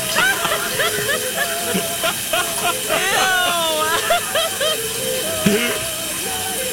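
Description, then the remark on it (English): A steady, even hiss of running shower water fills the background while people talk and react over it, their voices rising above the constant spray. “So here's a shower.”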